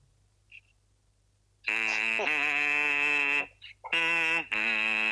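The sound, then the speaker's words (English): A voice hums a hip-hop bass line in a loud, buzzy nasal tone: a sustained low note that steps down in pitch, a brief pause, then another low held note. No other voices or sounds join it. “That's the bass line.”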